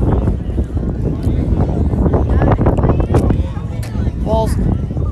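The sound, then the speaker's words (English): Strong, chilly wind buffets the microphone at a baseball game in a loud, continuous low rumble that barely lets up, with faint muffled voices occasionally poking through underneath. “Really, really windy along with chilly.”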